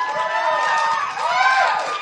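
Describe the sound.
A live show audience at Pensacon cheers loudly and steadily for about two seconds, a dense wash of many shouting, whooping voices with rising and falling yells that never let up.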